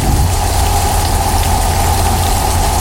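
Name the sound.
rain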